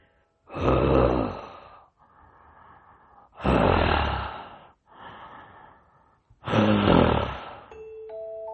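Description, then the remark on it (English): Raspy, heavy breathing in a dark closet, with three loud, rough intakes of breath each followed by a softer, hoarse exhale in a slow, steady rhythm. No one speaks. “I heard raspy breathing behind me in the dark closet.”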